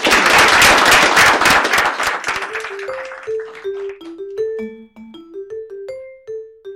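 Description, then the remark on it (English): A loud burst of audience applause at the end of a Notre Dame International Security Center seminar fills the first few seconds, then thins and fades as a simple tonal melody of single stepping notes takes over. “If you could please give one more round of applause.”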